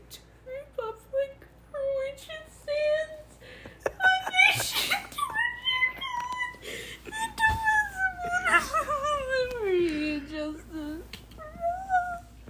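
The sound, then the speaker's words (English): A string of whimpering, crying-like moans, drawn out and wavering, sliding up and down in pitch, repeating steadily with only brief pauses between cries. “You sound like the bitch from Glee when she starts crying.”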